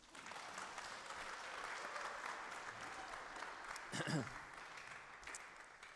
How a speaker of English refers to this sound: Clap one more time.